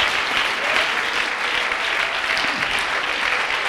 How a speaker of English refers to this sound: Let's clap our hands to the Lord tonight. Thank you, Jesus.